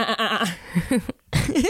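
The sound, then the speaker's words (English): A voice imitates a goat's human-like scream: a wavering, bleating cry with a quivering pitch, a brief pause, then a second strained yell, loud. “I've heard of goats screaming like humans, and that's wild.”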